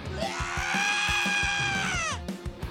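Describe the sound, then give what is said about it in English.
A single long, piercing scream holds steady for about two seconds, then bends downward and breaks off, layered over music with a steady thumping beat that continues afterward. “It's something in a scream captured that I like that.”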